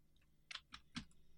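A few crisp computer keyboard key presses, three distinct clicks spaced irregularly, fairly quiet with a faint low hum beneath.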